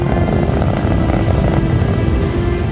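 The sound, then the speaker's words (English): The roar of a rocket launching a delicate scientific instrument into outer space: a loud, steady wall of rumbling noise, heavy in the low end, with a faint humming tone running through it and no break for the whole stretch. “You're taking this extraordinarily delicate, precise, state-of-the-art scientific instrument, you're slapping it on a rocket, and for the next 8 minutes, the explosion from that rocket is following you into outer space.”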